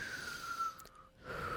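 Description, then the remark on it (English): A long, deep breath drawn in, a steady airy rush that briefly eases before swelling again. No talking. “Just take a deep breath in.”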